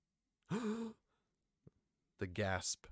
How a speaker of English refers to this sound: the gasp heard around the world.